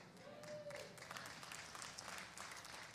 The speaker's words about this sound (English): Thank you for your pitiful applause. That was about 9 people.